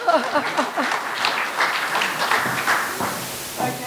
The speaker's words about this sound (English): Oh, you mob like to clap, eh? Next time, clap louder.